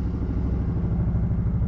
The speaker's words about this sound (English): Don't mind the sound of that helicopter. They're probably not coming to get me. Yeah, actually, I know they're not.